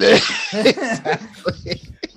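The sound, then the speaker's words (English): A sudden, forceful sneeze bursts out, followed by a few breathy, voiced gasps or chuckles trailing off in short bursts. “God bless you.”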